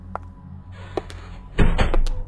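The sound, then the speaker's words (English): A door handle clicks and a front door swings open, followed by a louder thud as it shuts, with faint rattling and low rumble around it. No one speaks. “Why have they left the door unlocked?”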